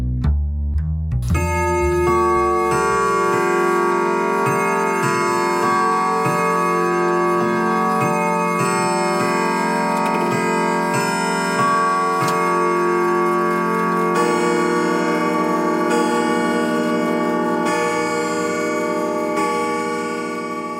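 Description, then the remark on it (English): A clock bell chimes twelve times in a slow, steady series, each loud, rich strike ringing into the next so the tones overlap in a sustained resonant hum, with no voices. “So, turn out the lights, draw the shades, wrap up in your favorite blanket by the speaker, and listen for the 12 bells.”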